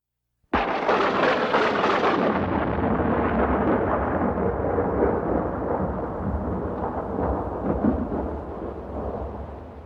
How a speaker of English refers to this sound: Eric, put in a sound of a lightning bolt here.